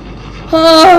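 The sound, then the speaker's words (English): A dog whimpers in one sustained, high-pitched whine that starts abruptly after a quiet moment, then bends upward in pitch near the end. It's fairly loud, with no talking over it. “Okay, I'm gonna do the voiceover for the dogs because these dogs need some motherfucking justice.”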